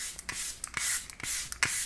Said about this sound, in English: I'm setting my face so far with what I have with the Rare Beauty setting spray.